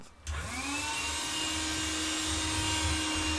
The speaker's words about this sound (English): Jez needs to just run and get the Hoover.